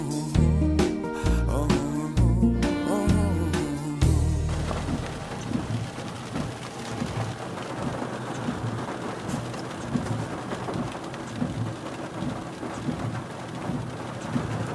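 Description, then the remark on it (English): Steady, dense rain drums and patters on the roof of a small rented Toyota car with a windshield wiper going, continuous and fairly loud, taking over after a few seconds of music at the start. “that lovely, lovely sound of rain on the roof of a car, windshield wiper going.”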